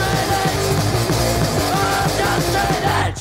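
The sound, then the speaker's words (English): A loud, dense hardcore punk song with distorted guitars, pounding drums and a singer yelling in tune over the top, running steadily at full volume for a few seconds. “that he's not just like barking, like it's on key.”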